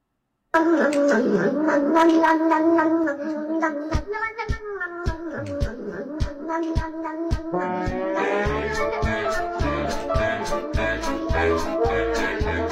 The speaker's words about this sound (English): And it's the Kitty Drinking Milk song with the best ensemble, I think, yeah, that exists so far. Here it is.